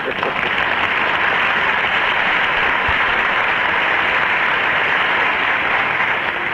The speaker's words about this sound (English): Big round of applause for all of us supporting film photography, and we'll be right back with the show.